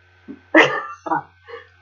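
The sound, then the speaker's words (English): A voice imitates an exasperated dog sigh from the back of a cart: a breathy, whiny huff followed by a few shorter grumbling vocal bursts, moderately loud, with no other talking. “You hear an exasperated doggy sigh from the back of the cart, listening to this entire stuff going on.”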